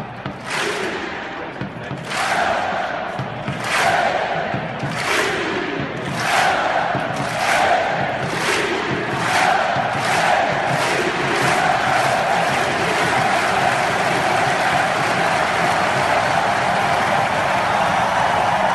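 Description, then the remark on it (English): A huge stadium crowd of soccer supporters, all four supporter groups, performs a Viking chant with an ATL (Atlanta) influence, recorded on video during a game: booming unison shouts land at a steady beat, each followed by a sharp clap-like thud, gradually quickening while a roaring crowd fills the gaps. “A Viking chant with the ATL influence.”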